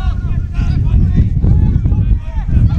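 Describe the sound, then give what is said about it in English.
Heavy wind buffets the microphone in a constant low rumble throughout, with faint, indistinct voices mixed in beneath the roar, as the wind picks up during an outdoor football match, with no rain falling. “As the wind picks up, desperately picks up. It's getting very windy here.”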